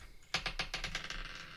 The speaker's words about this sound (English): Got to work on that rolling. The good old dice on the floor trick.